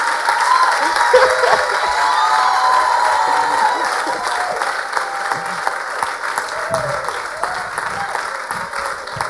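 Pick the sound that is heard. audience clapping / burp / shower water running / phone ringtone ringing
audience clapping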